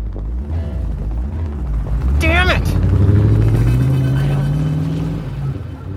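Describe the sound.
A car engine rumbles and revs as the vehicle pulls away down an alley, its tone rising steadily, with a brief high squeal near the start and voices talking over it.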